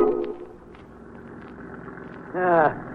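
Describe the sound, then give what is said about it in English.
A boat motor drones steadily at a low pitch, with a faint wash of water splashing around the prow as the boat approaches an island at sundown. Brief voice-like tones rise over the engine at the start and again near the end. “You know, I can still hear the motor of the boat and the water splash around the prow.”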